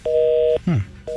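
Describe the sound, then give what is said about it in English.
A telephone busy signal: a steady, clear dual tone pulsing on and off in half-second bursts, with a short voice sound slipping into the gap between beeps. “But that wouldn't go to a busy signal, would it?”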